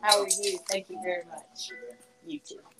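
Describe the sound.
The keys to a store jingle and clink in short metallic bursts as someone comes in, mixed in with voices talking over them.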